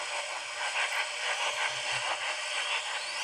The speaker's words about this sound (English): Oh, it's a steam cleaner. Someone's steaming their clothes.